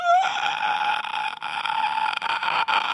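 A loud inward scream: a strained, high-pitched screeching voice held steadily for about three seconds after a brief rising start, with no talking around it.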